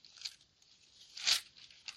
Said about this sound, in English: I love hearing that, amen? I like hearing those pages turn.